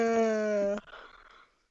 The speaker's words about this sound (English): The fact that he can't stop yawning. You might need to get that checked out. It looks pretty serious. I mean, I know. I'll go in the morning. Can you not yawn for like 1 second?